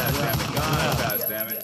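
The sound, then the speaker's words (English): A rapid, steady burst of gunshot sound effects, loud, firing continuously for under two seconds with a dense, crackling texture. “Gunshots for everybody.”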